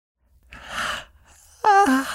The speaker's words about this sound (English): The mother yawned and shifted in her chair.